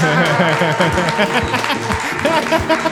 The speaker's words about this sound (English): You guys held your applause for last names, and I'm like, no. Hi, guys. No problem. I'm a bad introducer. I said, please welcome Matt, Ben, and Noel, and they waited because they thought I was going to say Shackman.